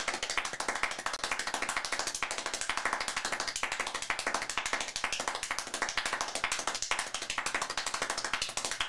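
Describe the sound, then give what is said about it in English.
An audience claps as fast as possible, aiming for 14 claps per second: many hands clap rapidly together in a dense, fast crowd patter that holds steady and loud for the whole stretch, with no voices heard. “We'll go for 14 claps per second.”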